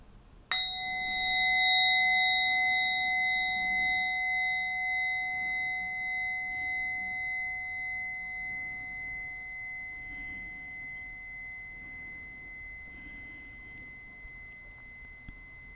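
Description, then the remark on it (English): A single meditation bell is struck once to end a meditation session and rings out with a clear, bright tone, its shimmering overtones slowly fading and gently pulsing for many seconds, with no talking. “And then taking three deep breaths as I invite the bell to end our meditation today.”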